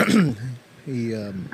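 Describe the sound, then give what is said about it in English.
A single short cough, loud into the microphone, followed by a brief voiced murmur and a faint breath. “I'm sorry for coughing into your mic.”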